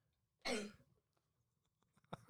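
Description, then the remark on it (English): One loud, harsh cough bursts out near the start, followed by quiet rustling and then two shorter, sharp throat-clearing coughs at the end, with no talking. “You're just coughing in the background.”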